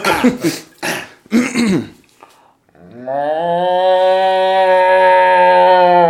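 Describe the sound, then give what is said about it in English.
A person imitates a regular cow: three rough, strained vocal bursts, then a long, steady, low-pitched moo held for several seconds at full loudness. “That sounds like a straining cow.”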